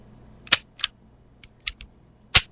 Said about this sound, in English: That's a dry fire is what that is. That is it.